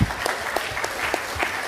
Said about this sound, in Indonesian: Keren nggak? Jawabannya itu adalah Bali. Tepuk tangan untuk Bali.